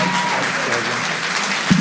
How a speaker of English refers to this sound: Keep the applause going for Chloe, who's going to share her story.